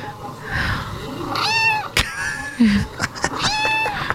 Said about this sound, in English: 157 million fucking views this video has. It's just a compilation of cats meowing.